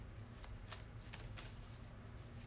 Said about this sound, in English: So just shuffling the cards so we can see what we need to know about the crown chakra this week.